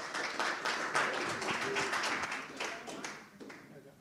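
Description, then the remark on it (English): An audience at Liberty Family Church applauds to welcome back a guest speaker, with dense, steady clapping for about four seconds, many overlapping hand claps blending into a continuous wash that gradually tapers off at the end. “So, hand a round of applause,”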